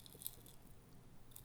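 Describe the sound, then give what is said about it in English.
Quiet crunching and chewing of food, a steady run of small crisp bites and mouth sounds with no talking. “Concerned crunching.”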